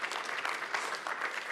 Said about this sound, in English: Just give her a round of applause.